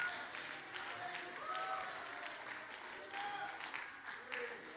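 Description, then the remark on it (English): An audience claps together to thank the Lord in a dense, sustained round of applause for several seconds, steady in loudness, with faint voices calling out through the clapping. “We need to clap our hands and thank the Lord together.”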